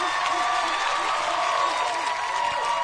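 A crowd on the show Drop the Mic cheers and claps for a contestant, a steady, dense roar of applause and voices that holds at an even, loud level for about three seconds without a break.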